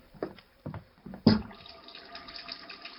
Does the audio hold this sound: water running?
yes